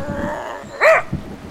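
A dog gives one short, sharp bark, a bright rising-then-falling yap that rises clearly above a quiet, steady background.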